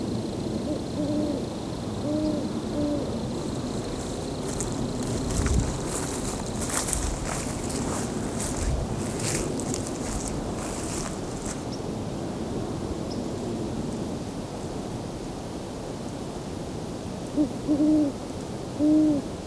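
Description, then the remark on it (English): A great horned owl gives deep, soft hoots in short runs at the start and again at the end, with crunching footsteps and rustling in between as someone walks to get closer to it, over a steady background hiss. “There we go, great horned owl.”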